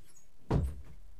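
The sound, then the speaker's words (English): The speaker's door shuts with a single dull thud, followed by a brief low rumble as it settles, with no talking. “Wait a minute, I'm gonna go close my door because I feel like it's playing a lot on the sound.”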